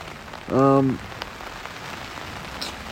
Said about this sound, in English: But maybe this is it coming sooner, which I kind of hope is the case, because then I can have a whole day hunting tomorrow instead of laying in the tent getting rain and snowed on like I am right now.